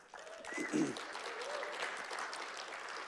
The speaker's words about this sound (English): It's worth clapping for if you know where we came from.